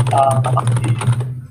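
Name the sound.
computer keyboard typing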